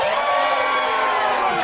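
An audience cheers and shouts in a loud, steady roar of many voices, with whoops rising above the crowd noise for the whole moment.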